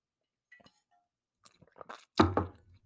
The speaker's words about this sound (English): And I think it's more, oh, let me take a sip here.